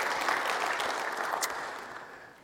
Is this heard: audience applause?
yes